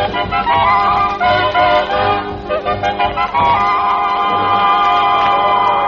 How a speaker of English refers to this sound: Good afternoon, football fans. This is KNBC bringing you the exhibition game between Central Night School and John J. Boskowitz Night School. This is the biggest crowd these old-timers have ever drawn.